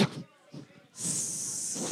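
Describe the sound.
A short burst of voice gives way to a steady hissing 'sss' made by mouth, imitating the alien's blood from the Alien films melting through a ship floor, held for about a second.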